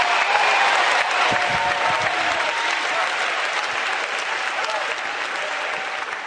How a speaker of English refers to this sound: You're doing more than clapping your hands. You're doing more than doing a jig.